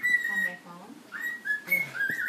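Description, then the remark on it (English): A bird chirps in a run of high, clear whistled notes, short phrases repeating over a couple of seconds with a slight rise at the end, while faint voices murmur underneath. “Did you hear the bird? Hear the birdie?”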